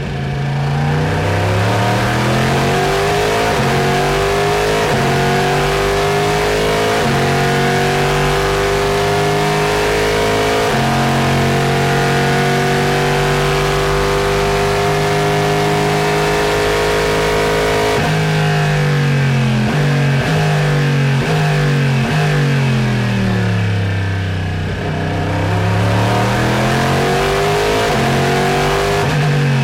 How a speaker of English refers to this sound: Now here, I present you with what I feel is one of the best sounding race cars in all of the land.